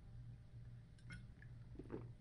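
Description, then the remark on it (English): Someone quietly takes a sip of water: a few soft, wet mouth clicks and a faint swallow over a low steady hum, with a brief bump at the very end. No one speaks. “I'm gonna take some water.”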